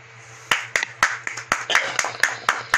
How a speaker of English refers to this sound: Round of applause. Round of applause.